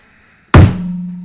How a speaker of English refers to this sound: I know we said no table slams, but...